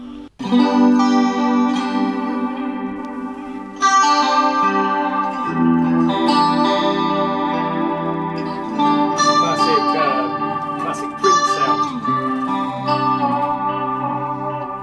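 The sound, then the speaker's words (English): Electric guitar chords played through a delay pedal with a little chorus added, the delay set to about a 50-50 mix with a fair bit of feedback: sustained, spacious chords struck every few seconds, each ringing out with shimmering repeats trailing behind. Loud and steady, with no talking. “How To Get The Most Out Of Your Delay Pedal”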